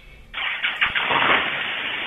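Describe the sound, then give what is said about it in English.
A man gets in his car and its engine cranks with a few quick churning pulses, then catches and settles into a steady, fairly loud run. No one speaks. “Oh, shit, he's getting in his car.”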